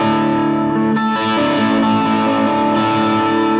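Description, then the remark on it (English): An overdriven single-coil electric guitar, played through an OD3 overdrive pedal (volume about 10 o'clock, gain about 2 o'clock, tone about 12) into a clean amp, plays sustained, slightly gritty chords with bright, chiming upper harmonics, struck anew roughly every second and ringing loudly throughout, with no talking. “Also, if I was doing, say, things where I wanted it cleaner, say I went to the single coil sounds, if I left the tone on 5, I might not have quite enough chime in there.”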